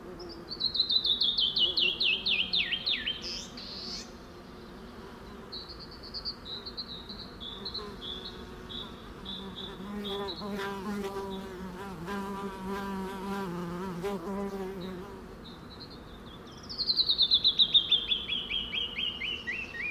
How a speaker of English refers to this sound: As luck would have it, a canyon wren suddenly appears on the other side of the wash and sings loudly from the top of a large boulder in clear view. What a spacious soundscape, canyon wren and bee buzz. Truly a Chisos Mountain sound delight.